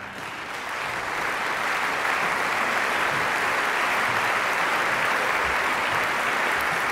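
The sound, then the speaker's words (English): An opera audience claps steadily, a dense, continuous wash of applause that swells in the first second and then holds loud and even throughout, with no voices standing out, applauding the conductor as he arrives in the darkened house, the traditional beginning of the opera. “As per tradition, the conductor arrived when the audience is dark and everyone applauding the conductor, say, okay, that's the beginning, the traditional beginning of the opera.”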